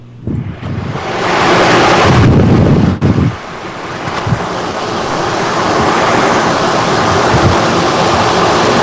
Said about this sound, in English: Jesus Christ, what the hell is that? They're gonna jet fly over again.